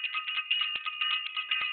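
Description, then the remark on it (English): A bell rings continuously with bright, high metallic tones, trilling in quick steady pulses for a couple of seconds with no voices over it. “I gotta ring the bell for self-invested.”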